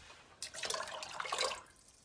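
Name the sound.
water poured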